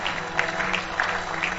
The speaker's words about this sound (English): Keep clapping if you want to go deeper and deeper and deeper.